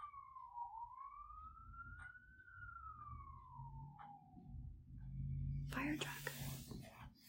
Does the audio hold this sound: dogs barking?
no